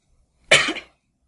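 A single short, harsh cough bursts out, lasting under half a second before fading into silence.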